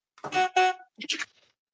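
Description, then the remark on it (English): Two quick, blaring car horn honks in close succession, played as a sound effect from a soundboard, followed by a short, scratchier burst of sound before it falls quiet. “I need a honk.”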